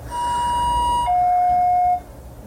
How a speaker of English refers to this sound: I am not hearing it because I'm listening to this spacey music in my headphones. So I didn't hear the alarm. So just try to ignore it.